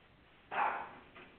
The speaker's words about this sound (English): Hello, we have a dog. I hear a dog barking again.